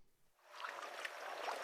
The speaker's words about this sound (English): steers his boat across the water in Gloucester, Virginia. Quite pleasant right now.